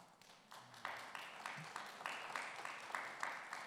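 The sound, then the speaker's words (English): An audience applauds a church's Christmas blessing tree ministry; the applause starts thin and quickly swells into a steady, fairly even patter of many hands clapping, with no voices over it. “Our Christmas blessing tree ministry, absolutely, you can applaud that.”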